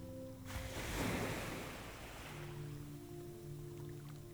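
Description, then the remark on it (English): A boat pushed out from a beach is rowed through shallow sea water toward a little island: one soft swell of water swishing and washing past, rising and then fading, over a steady low tonal hum. No one speaks. “You push the boat out from the beach into the shallow water, where you hop easily on board and begin rowing.”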